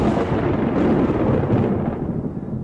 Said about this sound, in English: I love a lightning storm. Me too, Dad.